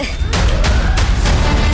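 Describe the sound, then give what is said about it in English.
A car engine sputters to life with a deep, steady rumble, punctuated by a rapid series of about five loud, sharp backfire bangs at uneven intervals. “You're going to start the engine sometime soon,”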